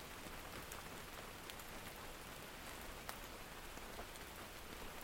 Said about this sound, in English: Or maybe this rain will go on for days and days, as it did in 2019, and fill this cabin with water and take it down the river to Lac Simon.